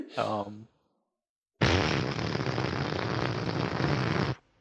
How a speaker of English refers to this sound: No, I mean, Silent but Deadlies don't work. It has to be like a loud time fart to break reality and send us back.